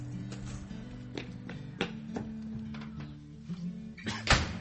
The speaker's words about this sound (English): what have I told you about slamming the door?